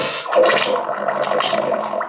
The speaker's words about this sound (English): I just want to play an aqua fart